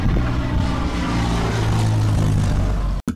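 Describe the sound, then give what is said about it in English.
A cargo plane bound for the jungles of Costa Rica drones steadily in flight, its engines a loud, continuous low rumble with a humming undertone that holds before cutting off abruptly near the end. “The trio of 2.5 men is on a cargo plane bound for the jungles of Costa Rica when suddenly...”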